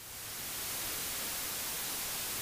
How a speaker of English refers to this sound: As I stood up, I remember hearing the terrifying noise of the TV static coming from behind me. As I turned around, my entire television was in complete static.